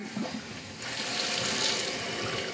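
A 1.6-gallon toilet tank in a bathroom refills with a steady rush of running water that swells in after a brief quiet moment and hisses on evenly to the end, with no one talking.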